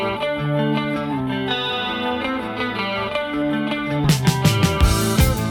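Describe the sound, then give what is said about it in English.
A new wave pop song by a Canadian band plays loud: chorus-laden electric guitar chords ring out alone, then a punchy drum beat kicks in near the end. No one speaks. “I'm going to take you guys now to ….”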